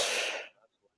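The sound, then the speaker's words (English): A single sneeze, a sharp, loud, breathy burst lasting about half a second that cuts off abruptly into quiet, with no talking over it. “God bless you, like, man.”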